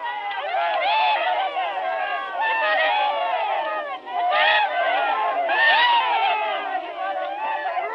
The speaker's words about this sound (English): I mean, they just really dive right into it. Now, these aren't little sobs and little whimpers by any means. These professional criers are actually wailing as though they just lost their children. This is what you get with a pro.